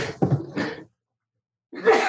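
Two forceful sneezes separated by a brief silence, each a sharp, breathy burst; the second sneeze is cut off at the end.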